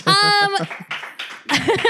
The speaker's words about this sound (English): That's the biggest round of applause we've got.